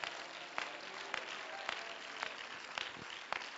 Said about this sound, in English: Amen. Let's clap our hands and give praise to Him right now.